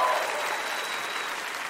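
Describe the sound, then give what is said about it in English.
Steady studio audience applause on a quiz after a contestant answers correctly fills the whole moment, a dense, even wash of clapping hands at moderate volume with no voices standing out. “I felt the crowd got a little violent there”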